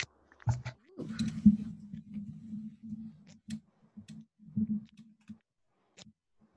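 A zipper being zipped up, a buzzing, clicky rasp that runs in a few uneven pulls and bursts for several seconds before stopping, with no one talking, made as an ASMR sound.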